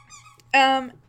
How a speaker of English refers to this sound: And we have a dog with a squeaky toy, so I will not get rest.